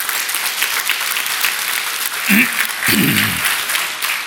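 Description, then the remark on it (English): A church audience applauds steadily for a woman being thanked, a dense crackle of many hands clapping at once, with a few brief voices rising faintly beneath the clapping. “And whoever started that clap, it's on you.”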